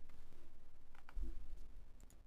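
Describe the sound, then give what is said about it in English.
A few sparse, light keyboard clicks tap out at an irregular pace against a low, steady background hum. The keystrokes sound quiet, with no voices. “Welcome to, it's like ASMR, like welcome to a typing podcast, yeah, we're going to do some keyboard typing.”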